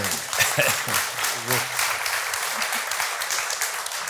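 An audience applauds steadily, a dense wash of many hands clapping at once, with a voice briefly audible underneath near the start and middle.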